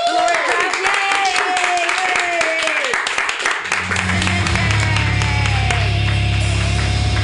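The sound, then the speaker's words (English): An audience at the Joke Workshop comedy show claps steadily for a comedian for about seven seconds, a loud, dense patter of many hands. Tonal sounds run beneath it, and a low sustained hum joins halfway through. “Is everybody, can we all clap again?”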